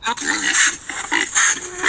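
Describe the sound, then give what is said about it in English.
A run of loud hog oinks and snorting grunts follows one another almost without pause, with a nasal, squealing edge to each call and no talking, as a hog is hitched at the north fence. “Two hogs at the north fence.”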